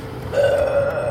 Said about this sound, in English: My God, woman. Usually pop only makes me burp like that.